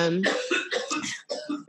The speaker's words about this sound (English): You probably couldn't hear me. Like, there's a lot of coughing.